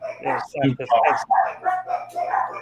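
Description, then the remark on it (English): A dog barks and yips repeatedly in quick bursts, loud, with the barks running almost continuously over a few seconds and a faint low hum underneath. “and just in time, the dog stopped barking.”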